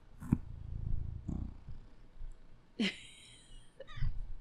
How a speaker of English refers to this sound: Here's my cat. Right? Listen to him. Say, hello.